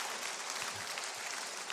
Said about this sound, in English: And you know why that line got applause? Because we're in Tennessee and there's a lot of great American patriots.